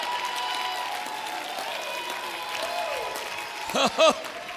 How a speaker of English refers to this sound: Come on, stand with me. Clap your hands if you believe he's the baptizer.